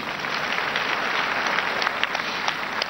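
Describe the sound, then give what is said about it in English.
A crowd claps steadily for people who shared when they believe their life began, a dense, even wash of many hands with sharper individual claps popping out now and then, sustained at a constant loudness for about three seconds. “Let's clap for them.”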